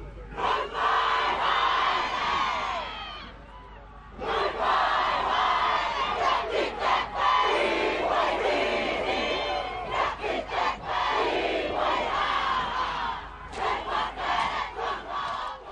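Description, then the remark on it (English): A home crowd roars a fierce, rhythmic challenge at visitors in a wero-style face-off, with about 10 men in the middle of the field, many voices shouting and chanting loudly in bursts, with two brief breaks before the chanting surges again. “The visitors on the home crowd's turf, and the home crowd challenging the visitors as if to say, look, we welcome you here, but this is our turf.”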